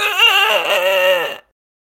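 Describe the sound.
A person imitates a goose being strangled as a sound effect for an improvised scene: a loud, strained, squawking cry about a second and a half long, wavering up and down in pitch, then breaking off into silence.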